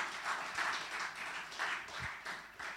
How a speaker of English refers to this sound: As I mentioned earlier, another brother of ours from Burundi too. You can welcome him. You can give him a clap